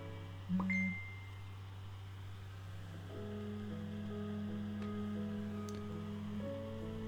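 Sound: phone message notification ding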